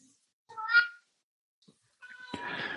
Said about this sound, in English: Sorry about Ginger chiming in. Ginger is our elderly cat. She's 17 years old and a bit senile. So I would ask for the listeners' forgiveness for Ginger.